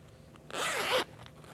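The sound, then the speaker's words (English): A zipper on a tapestry tablet Bible case made in Turkey, with a nylon cord handle, is pulled open in one smooth, raspy stroke lasting about half a second. It is fairly loud against a quiet background with no talking. “It has a zipper with a nylon cord handle.”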